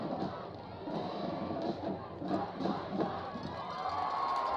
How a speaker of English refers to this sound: You can hear the chants, the screams from the China Spring sideline.